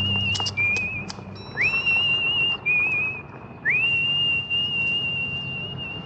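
A woman whistles a slow, eerie tune from the 1968 thriller film Twisted Nerve, holding long steady high notes joined by upward slides, with a faint low background murmur and no talking.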